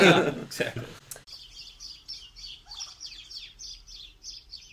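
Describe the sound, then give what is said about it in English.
A brief burst of voice opens, then a sound effect of little birds: a steady series of high, quick chirps repeating in a bright rhythmic pattern, clear against a quiet background. “Those little birds can only mean one thing.”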